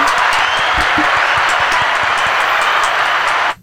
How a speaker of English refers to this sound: I'm going to miss you a lot, so everyone give her a round of applause.